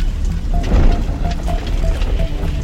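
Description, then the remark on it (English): Strong wind roars over open water during a boat crossing as a storm may come up, in a steady, loud rush with a heavy low rumble, broken by faint, short creaking tones. “Do you hear that wind?”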